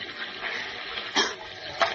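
Steady rushing roar of sea lashed by a stiff breeze into white-capped waves that pound the upturned hull of a capsized boat, with two sharper splashing surges, one about midway and another near the end. Fairly loud, with no voices.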